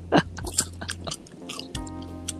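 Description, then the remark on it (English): Crunchy chewing of dark chocolate sea salt popcorn, with a loud first bite followed by a quick series of sharp crackling bursts over a steady low hum. No one speaks. “What are you eating ba? Dark chocolate sea salt popcorn.”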